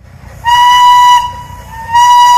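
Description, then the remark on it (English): The House of David steam-powered locomotive 902, fired up for the first time in about 50 years at the Michigan Flywheelers Museum in South Haven, chugs with a low rumbling rhythm while its shrill, steady whistle blows twice in long blasts, rich with harmonic overtones, loud over the engine noise. “For the first time in about 50 years, the House of David steam-powered locomotive 902 has been fired up and operating at the Michigan Flywheelers Museum in South Haven.”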